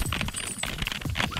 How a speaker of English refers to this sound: Why does this typing sound so light today?